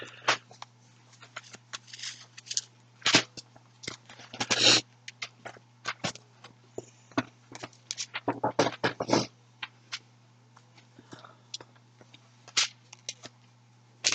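A chair creaks and cracks in an irregular run of sharp, dry clicks and short crackling bursts, some clustered and louder, over a steady low electrical hum, with no talking.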